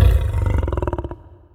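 A lion's roar, powerful, opens with a deep rumbling bellow that breaks into a quick series of pulsing grunts, fading out within about a second.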